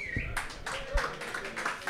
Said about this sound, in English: Spirited applause.